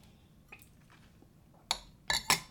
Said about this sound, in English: I'm gonna take a sip of my martini and we're just gonna keep going.